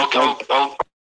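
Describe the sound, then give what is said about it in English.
A brief burst of muffled, distorted voice coming through a call line, sounding echoey and tinny for under a second before cutting to silence. “you've got this really echoey thing going on.”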